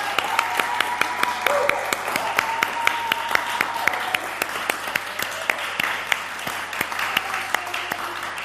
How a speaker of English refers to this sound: but we have given you the birthday hat and we'll give you a round of applause. Here's to six.